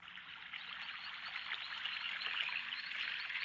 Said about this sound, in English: And so now we've been transported to a garden.